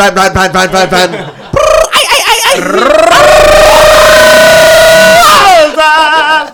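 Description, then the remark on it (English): A man's voice wildly imitates chicken squawks, starting with a rapid run of sharp clucking bursts, then a long, loud, strained screech, and ending in more frantic squawking. “Going buck fucking nasty wild. Super funky chicken.”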